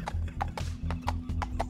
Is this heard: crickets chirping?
no